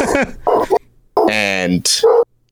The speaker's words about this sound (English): Sorry, my dog is going ballistic.